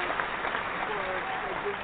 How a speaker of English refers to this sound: I just want to give, the board of directors for the Super Bowl a round of applause.